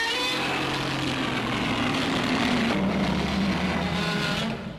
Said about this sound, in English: Yeah. Like, there's a lot of other Godzilla roars that are very screechy. There's yeah. a few more that sound a little bit more tinny. There's a few others like that just sound like more realistic, like more animal roars.